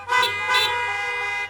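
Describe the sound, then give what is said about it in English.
Car horns blare together in a sustained, overlapping chorus as people in their cars honk for each passenger under the age of 18, with two louder bursts at the start before the steady honking holds for over a second and cuts off. “Honk for everybody in your car that's under the age of 18.”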